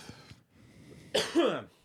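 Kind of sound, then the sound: human body sound, cough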